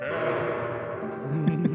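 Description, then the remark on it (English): A voice imitates the heavy snoring of a woman still asleep in the morning, a rough, drawn-out nasal rasp that swells and rumbles, with a brief guttural catch near the end. “Is she snoring? She's snoring very badly.”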